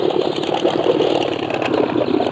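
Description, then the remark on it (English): A small boat motor drones steadily on a river as the boat comes around a bend, a continuous mid-pitched engine hum at moderate volume with no voices. “On the river, just coming around the bend. A small boat.”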